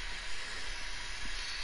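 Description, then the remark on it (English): A steam pipe gives a steady, unbroken hiss of escaping steam, bright and airy, holding the same level throughout with no voices or other sounds over it. “The minute I turn that steam pipe off, zombies will be coming in.”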